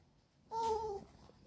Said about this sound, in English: And the dog is back.